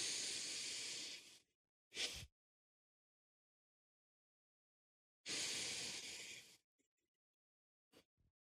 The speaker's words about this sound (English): And now if we watch a nasal inhale and exhale, the pace is greatly reduced without me having to do anything.